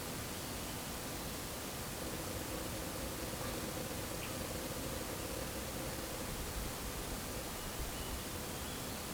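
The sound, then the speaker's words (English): A steady, soft wash of gentle breeze mixed with the continuous ripple of water on Sixth Creek, unchanging throughout, with no voices. “A little bit of a breeze. Mm. Calming.”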